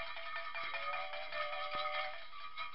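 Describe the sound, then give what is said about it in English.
A bright, bell-like ringtone chimes steadily from a small audio recording device, its layered electronic tones ringing continuously for a few seconds, with a couple of faint clicks and no talking. “I'm this close to tossing my phone and Zoom recorder in the trash, because this thing has got it all the bells and whistles, literally. Listen to this.”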